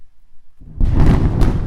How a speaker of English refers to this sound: Wait, I think I heard something. It was thunder.